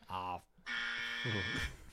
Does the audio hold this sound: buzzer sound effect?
yes